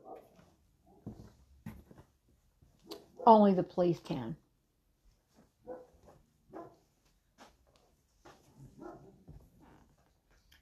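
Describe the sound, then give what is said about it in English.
A short burst of several loud barks from dogs in quick succession rings out in the middle, with a man speaking intermittently before and after. “Apologize about the dogs barking.”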